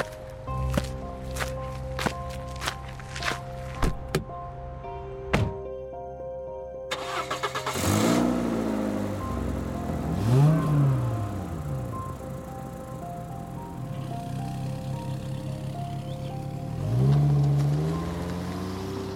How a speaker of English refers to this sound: So you guys hop in the car, you start heading back over to Pizza Dragons.